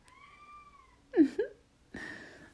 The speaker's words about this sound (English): Kitty wants to sleep with someone.